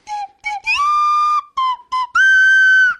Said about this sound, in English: Do you have your slide whistle? There should be, like, some victory music going on here. Okay, a little bit of victory music